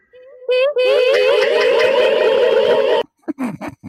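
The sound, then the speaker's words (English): A dense, shrill chorus of many overlapping high-pitched "hee hee" squeals blares loudly for about two and a half seconds, then cuts off abruptly into brief talking. “That was like 5 billion … hee hees playing at the same time.”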